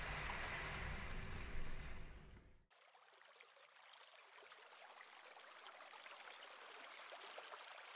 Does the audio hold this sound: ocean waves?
yes